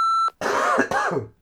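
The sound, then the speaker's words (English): A brief high electronic beep, then a person imitates a lion's roar with a harsh, raspy growl in two strained bursts that tail off, with no words spoken. “Your impression of a lion's roar needs some work”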